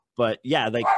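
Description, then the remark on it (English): A dog barks loud: a short yelping bark followed by a longer, drawn-out string of barks with rising and falling pitch, heard on its own. “Shut up, dog.”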